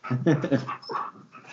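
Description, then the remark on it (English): A puppy whimpers in a few short, high, whiny bursts, followed by quick breathy panting, over about a second and a half. “Oh, hi. Hi, puppy.”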